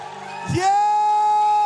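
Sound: audience shouting and cheering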